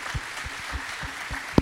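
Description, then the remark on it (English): Audience applause for the guests at the end of a live talk event, a steady hiss of many hands clapping at moderate level with scattered soft thumps and one sharper, louder clap near the end. No one speaks over it. “Give you guys a round of applause.”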